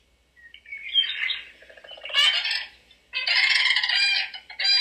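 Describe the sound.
A person imitates a crane's call with their mouth, giving a few loud, rolling trumpeting bursts with brief pauses between them. No one talks.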